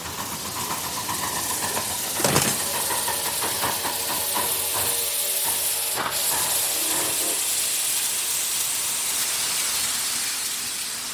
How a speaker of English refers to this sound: Come on up aboard the train.